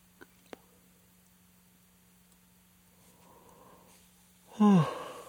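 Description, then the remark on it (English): A quiet, breathy inhale builds before a single loud, voiced yawn near the end, its pitch sliding downward as it trails off, with no talking. “I mean, even now, I peeled off 3 yawns and I don't...”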